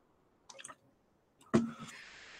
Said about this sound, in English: Okay, I'm just going to take a sip of water here.